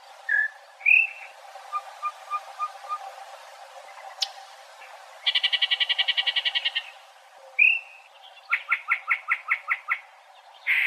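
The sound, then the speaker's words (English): A single bird sings an odd, varied song of whistles, soft repeated notes, and rapid buzzy trills, with clear pauses between phrases and no voices. “They have one of the craziest songs that you'll ever hear.”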